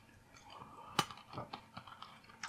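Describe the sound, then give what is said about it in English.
Crunching of a single honey roasted chickpea, a sharp bite followed by several irregular crunchy chews, fairly quiet and with no talking. “A pretty good crunch.”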